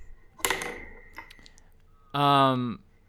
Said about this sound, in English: I'm trying to find a thing that I can spin. Cap is okay. Give me cap or give me pencil or eraser. I'm gonna spin a pencil and I'm gonna see which way it points.